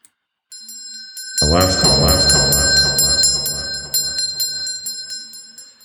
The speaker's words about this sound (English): I think it's time for last call. What do you say we sound the alarm? Oh, yeah, last call.